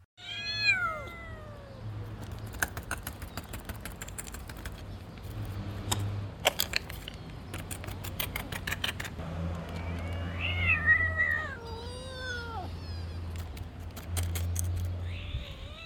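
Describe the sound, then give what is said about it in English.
Little kittens clinging together meow in thin, high-pitched cries, a cluster near the start and another run later, over a steady low hum with scattered clicks and rattles in the background. “And then these little kittens, they cling together because they don't roam out”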